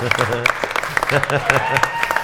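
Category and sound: crowd, audience round of applause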